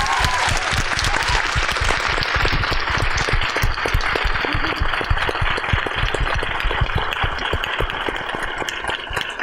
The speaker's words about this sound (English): So can we please have a huge round of applause for everyone?